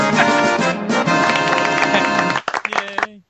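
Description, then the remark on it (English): A bright, brassy Final Fantasy video game victory fanfare plays loudly in dense chords, then breaks into a few short staccato notes before ending on a held final chord. “Cue Final Fantasy Wind music and clapping, which he just did.”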